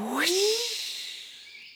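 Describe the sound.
A person voicing the character Boris the bird imitates a bird with one short, rising vocal call wrapped in a breathy, hissing rush. It sounds isolated, then fades quickly into a soft airy tail.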